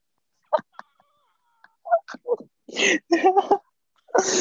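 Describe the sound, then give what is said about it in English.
A person coughs in a rough, irregular series of bursts, a few short hacks followed by a louder, harsher cluster and one last cough, with no talking. “And he just made straight eye contact with me while I was coughing.”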